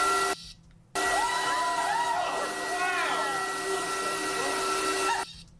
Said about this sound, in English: A compressor gun comes with the kit. It's just like on a Hoover, that's all it is, and it's going to blow all the paint flakes everywhere.